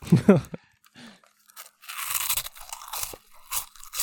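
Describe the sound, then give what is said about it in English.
Crunching of Cheetos cheese snacks, with crisp crinkling of a plastic bag in irregular bursts, preceded by a brief low vocal sound. “Just a bag crinkling? Oh, could you not hear the Cheeto? I'm trying to crunch really loud, but Cheetos are hard to crunch.”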